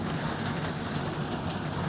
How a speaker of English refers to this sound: Hold on, y'all. I'll be right back because this rain is real loud right now.